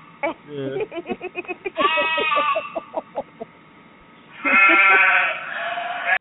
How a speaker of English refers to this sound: Yeah. It's a sheep.